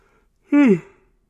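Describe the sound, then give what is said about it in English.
A single person yawns, a brief voiced groan sliding downward in pitch and trailing off into a soft breathy exhale, with quiet surrounding it. “Don't let the yawns, don't let them make it seem like I'm not interested in planning a trip to Canada, because that would be fun.”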